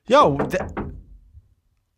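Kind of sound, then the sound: household object, knocking on a door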